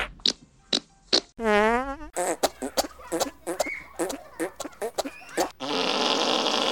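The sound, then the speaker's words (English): After a pull-my-finger joke, a loud fart rips out as a drawn-out buzzy blast, surrounded by short sputtering pops and bursts, then trails into a steady rushing hiss. “Hey, pull my finger. Pull my finger.”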